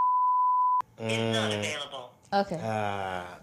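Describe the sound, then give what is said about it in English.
A steady, pure censor bleep tone covering a phone number holds for under a second, then cuts off abruptly as a person starts talking. “We should bleep out his phone number.”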